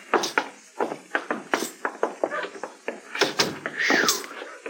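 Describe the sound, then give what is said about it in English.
A key jiggles and clicks in a lock with a quick series of metallic taps and clunks, then a door swings open with a short creak near the end. “You got the key, Chester. Yes, sir.”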